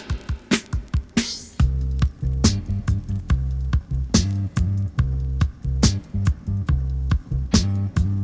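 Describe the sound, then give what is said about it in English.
A seven-inch vinyl record starts playing: punchy, crackly drum hits open, then a heavy bassline joins in and the music settles into a steady, loud groove with no talking. “we've got some vinyl to play, so you know the rules. Sit back, kick back, relax, pour yourself a drink, let's spin some sevens.”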